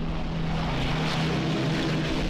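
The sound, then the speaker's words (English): The loud, steady droning roar of Merlin piston engines on a propeller fighter aircraft taking off and climbing, continuous, with a deep throbbing hum and broad rushing noise throughout, and no voices. “And in all that time, you had the consciousness of being surrounded by this sound of the Merlin engines.”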